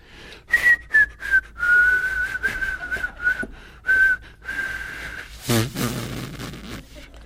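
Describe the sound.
A person whistles a slow, wavering tune in long drawn-out notes with brief breaths between them, before a burst of rustling noise near the end.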